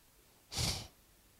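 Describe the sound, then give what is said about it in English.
One sharp, heavy exhale pushed out through flared nostrils, illustrating God breathing heavily, a short breathy snort lasting under half a second, fairly loud against an otherwise quiet background. “Because the word angry in Exodus 4 verse 14, I believe, is actually a picture of God flaring his nostrils and breathing heavily.”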